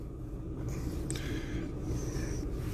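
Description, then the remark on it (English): Soft scraping and rustling of someone rummaging around inside a car for dropped cigarettes, in a couple of short bursts over a steady low engine and road rumble. “I dropped my cigarettes.”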